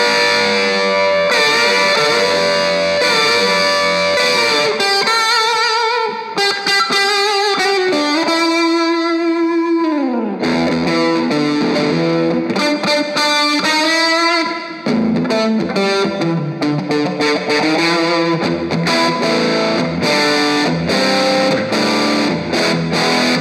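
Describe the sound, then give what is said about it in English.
Loud, continuous distorted electric guitar played through an amp's dirty channel, playing sustained chords and bending lead lines, drenched in a long, washy reverb that lets notes ring and blur together, with no talking. “A lot of reverb.”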